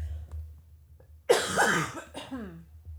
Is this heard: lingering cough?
yes